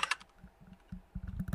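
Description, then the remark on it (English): Rapid clicking of keys on a computer keyboard as someone types the word "banana" into a website, a short burst of uneven keystrokes with brief pauses, ending in a quicker flurry of taps. “Alright, type it in. Type in banana.”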